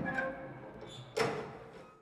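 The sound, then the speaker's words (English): Elevator doors slide open with a mechanical rumble as the elevator slows and stops: a steady low hum, then a sudden whoosh and clunk that trails off over about a second, with no voices. “I felt my body settle and my breathing become steady as the elevator slowed and stopped, the doors parting.”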